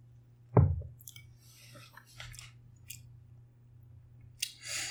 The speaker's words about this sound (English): So it's got blackberries, sweet basil from my garden, obviously you put simple syrup in there, and then lemon juice, and then 2 ounces of bourbon. And so we're going to take our first sip right now.